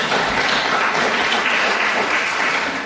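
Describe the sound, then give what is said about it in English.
An audience applauds steadily for Cressingham Gardens Estate, in southwest London, a dense wash of many hands clapping at an even, fairly loud level throughout, with no voices standing out. “Let's get a round of applause for Cressingham Gardens Estate, please.”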